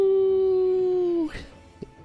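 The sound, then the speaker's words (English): A person imitates a small dog's howl: one sustained, steady, fairly loud howling tone lasting over a second, then breaking off into a brief breathy trail and quiet. “He will kind of run towards a point where he can see it apparating and let out his best little howl.”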